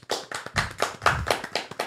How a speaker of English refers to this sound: Why are you trying to clap so loud? I don't know.